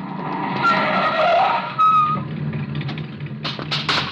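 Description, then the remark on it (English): A car swings around a corner at the intersection of a street and an alley, in a cheap section of a city just after nightfall. A drawn-out, high tire squeal sounds over a rumbling engine, loud, followed by a few sharp scraping bursts as it slides to a halt. “He comes to the intersection of a street and alley just as a car turns the corner.”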